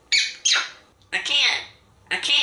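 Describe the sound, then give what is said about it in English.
A parrot squawks in three harsh, raspy bursts with short pauses between, its calls carrying a garbled, speech-like quality as though imitating words in a southern accent. “That's the actual bird? Yes.”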